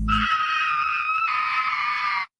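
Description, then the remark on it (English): A woman vocally imitates a firework with a loud, piercing, sustained high-pitched whistle lasting about two seconds. It hitches once midway, then cuts off abruptly. “That's a firework. I think that's a very talented woman.”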